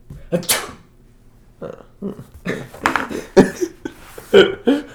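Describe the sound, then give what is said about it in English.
A single sharp sneeze bursts out near the start, followed by a few short voiced vocal sounds and murmurs from people. “Okay, so we're talking about sneezing, we're talking about courtesy, talking about a lot of things.”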